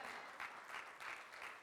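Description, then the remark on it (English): An audience claps steadily in a dense, sustained burst of applause, with the loudness swelling slightly in regular waves over the short stretch. “See, I see that's the, like, I got to force myself to believe that clap.”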